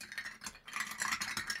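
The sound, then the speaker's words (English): Ice cubes clink and rattle steadily against glass as a cocktail, a twist on a Sazerac, is stirred over ice for about a minute, a quick run of bright, light clattering taps with no voices. “And then all we do is simply stir that over the ice.”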